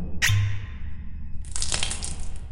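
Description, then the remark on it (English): A brief clink, then a steady rush of liquid splashing as it is poured onto the ground, continuous for about a second, with no voices. “Pour it on the ground.”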